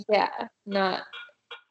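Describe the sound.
A baby monitor chirps with a few short, squeaky, voice-like bursts, the first two fuller and louder, followed by two faint, brief blips.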